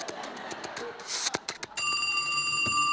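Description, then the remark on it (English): Mr. Fallon's telephone starts ringing partway through, a bright, steady metallic bell tone that holds to the end, preceded by a burst of clattering clicks and rustling noise. “Yeah, can you get that? Mr. Fallon's phone.”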